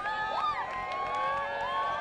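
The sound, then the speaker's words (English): A large crowd of Riverside Poly High School fans at a high school football game against Corona at Ramona Stadium, Ramona High School, cheers and yells steadily, many overlapping voices rising and falling in a continuous, fairly loud roar heard from within the stands. “A look at the Poly High School crowd here at Ramona High School.”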